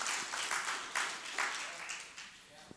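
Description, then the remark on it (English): A church audience claps a clap offering to the Lord in a dense, steady wash of applause, rising in a few bursts before tapering slightly toward the end. “Give the Lord a clap offering like you really mean it.”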